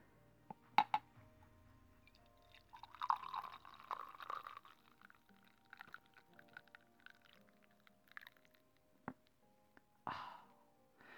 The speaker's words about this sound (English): For the most beautiful sound in the world, a pouring cup of coffee. So ready, 3, 2, and 1.